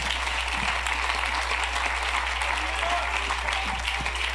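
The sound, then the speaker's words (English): An audience claps their hands to the Lord in a dense, sustained round of applause that fills the room steadily from start to finish, with a low hum running underneath. “Could we clap our hands to the Lord one more time?”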